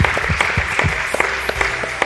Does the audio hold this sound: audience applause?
yes